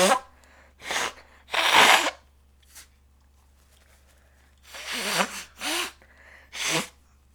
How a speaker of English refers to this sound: I really need to blow my nose. I'm just saying that so you can edit this out.